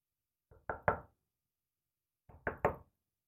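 Two quick bursts of knocking on a door, each a cluster of three sharp raps, separated by a pause of over a second in otherwise quiet surroundings. Fairly loud.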